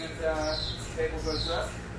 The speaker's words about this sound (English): Inside the MRI room, a pump chirps as it circulates helium that keeps the MRI cool.